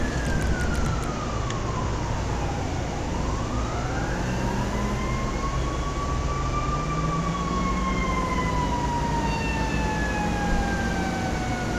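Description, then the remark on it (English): A fire truck siren in a video game wails steadily, its pitch sweeping down and back up, over a loud constant engine rumble, with no one speaking. “He's driving a fire truck.”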